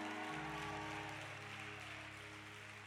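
An audience applauds in a steady, dense wash of clapping that holds for a few seconds, with sustained low organ-like tones underneath and no talking.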